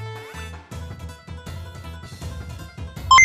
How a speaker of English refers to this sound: Calculating computer activated. Beeps.